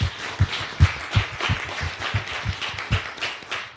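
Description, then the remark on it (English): A crowd applauds steadily for a few seconds at the final panel of the Radio Days Africa conference, many hands clapping in a dense, crackling wash with irregular louder claps standing out, no voices over it. “I think just give yourself a hand of round of applause.”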